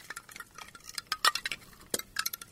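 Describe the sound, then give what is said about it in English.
A wind chime of sheep jawbones clinks and clatters in irregular bursts, dry, bright knocks tumbling together with a few sharper ringing taps, moderately loud, with no voices. “Hear that? That's lots of sheep jawbones.”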